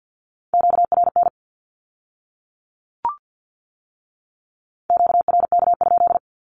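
Rapid bursts of a steady high-pitched Morse code tone sending Q-codes at 50 words per minute, a short group of dots and dashes, a lone click in the pause, then another fast group; clean with no talk.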